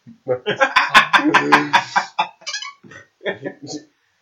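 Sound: voice imitating chicken clucking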